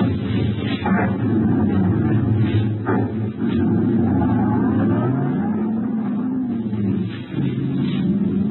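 A car engine rumbles steadily, its pitch rising as the car accelerates away in the rain, with a constant wash of rain and road noise underneath.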